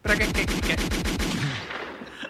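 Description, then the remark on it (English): A loud, rapid burst of automatic gunfire during filming in Fifth Ward, about a dozen shots in quick even succession, followed by a reverberant tail that fades out. No one speaks. “They're trying to film. Gunshots and shit.”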